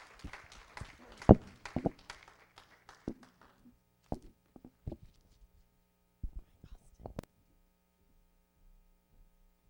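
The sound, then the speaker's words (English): A church audience claps hands for the Lord, a dense burst of overlapping claps at first that thins into scattered, irregular single claps and dies out after about seven seconds, with a low steady hum underneath. “Let's give the Lord a big hand clap today.”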